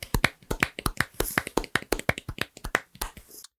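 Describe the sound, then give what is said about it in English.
A few people clap their hands together, a quick, steady run of sharp claps lasting several seconds, fairly loud, with no talking over it. “So, as we do at the end of every episode, we are going to clap for our champion.”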